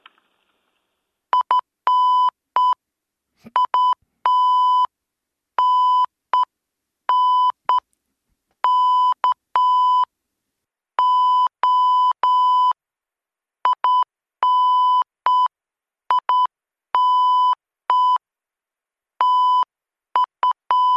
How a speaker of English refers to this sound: Okay, well, I'll say goodbye, goodbye, God bless, and I'll leave you with a little bit of Morse.